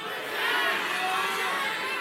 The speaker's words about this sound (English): All right, here's the deal. I'm going to count to three. I want you to yell it out. Who is your college team? Just yell it out.